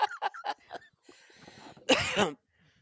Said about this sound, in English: Wow, that's a rapid stop of a laugh. Are you okay? Yes, it made me cough.